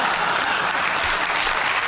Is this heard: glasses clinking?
no